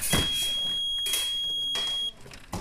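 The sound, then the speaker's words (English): A fencing scoring buzzer, set off when a fencer lightly touches the opponent's electric outer vest to score a point, sounds as a steady, high electronic tone held for about two seconds before cutting off, with a few short bursts of clattering noise around it. “An outer vest they wear is electric, so the lightest touch causes a buzzer to sound for a point scored.”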